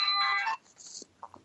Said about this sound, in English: That's James's mobile phone with his ringtone.